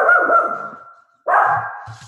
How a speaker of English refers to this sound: But the Sheltie poo likes to bark at everything. She thinks she's protecting me.